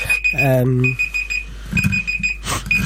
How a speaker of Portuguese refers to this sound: Não é o alarme de fumo isso, pai, não. Meu amigo, se tu algum dia acordas com isto, tu partes o telemóvel, acredita em mim.